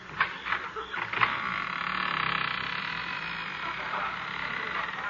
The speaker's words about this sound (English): Must be a haunted house. The door squeaks.